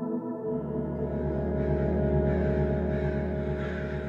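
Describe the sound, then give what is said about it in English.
Crows that have taken over a songbird tree caw loudly and continuously, many harsh calls overlapping into a dense, raucous chorus that starts abruptly and keeps going without pause. No one speaks. “So the chirping within the span of a couple hours gets taken over by crows squawking.”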